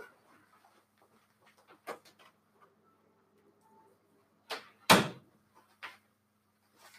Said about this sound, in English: Oh boy, did I just break the main rule of podcasting? Don't open doors and close them.